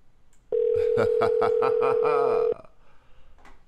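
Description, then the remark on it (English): One loud, steady phone ringing tone of an outgoing call holds for about two seconds and then cuts off, with a voice-like murmur layered over it and quiet background noise before and after. “Come on, answer your phone.”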